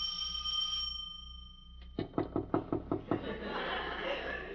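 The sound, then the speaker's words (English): A sustained electronic doorbell tone rings for about a second, then fades, followed by a quick, even series of about seven firm knocks on a door, loud. “Should I ring or should I just knock intimately? I'll do both.”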